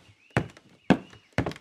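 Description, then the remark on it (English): Three firm, evenly spaced knocks on a door, each a sharp thud with a short ring, over a faint steady high-pitched tone and no talking. “There's someone at my door saying, knock, knock.”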